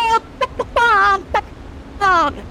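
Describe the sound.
Young voices imitate a chicken: a run of short, loud clucks mixed with two drawn-out, wavering squawks, with pauses between them. The calls stand out clearly.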